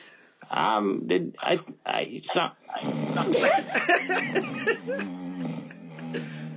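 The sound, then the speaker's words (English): A person loudly imitates snoring with rough, throaty voiced bursts, first in short choppy snorts, then a longer drawn-out growling rasp. “Do you have any issues with snoring?”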